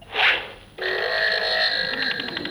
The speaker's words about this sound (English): Oh, well, I thought they might go down better than my set, but. I thought if I'm struggling, I'll just bring out the fart sound effects.